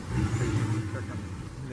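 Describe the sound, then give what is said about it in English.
An alligator's mating call: a deep, continuous rumbling purr with a throbbing, engine-like texture that holds steady at moderate loudness for the whole stretch. “Yeah, that's a threatening ass sound, and that's them trying to be sexy.”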